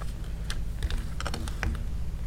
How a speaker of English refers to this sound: I'm just having some difficulties here with shuffling these cards.